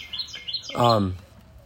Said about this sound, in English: I'm competing against a bird here for talking to you guys on this podcast. So I just hope y'all can hear me over the bird. Or maybe you don't need to hear me over the bird.